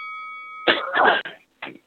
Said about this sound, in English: We all cough in here.